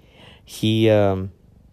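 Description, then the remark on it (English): A cat gives a single short vocal call lasting about two thirds of a second, fairly loud, with quiet background before and after. “Hey, kitty.”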